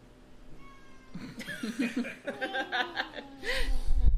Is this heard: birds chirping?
no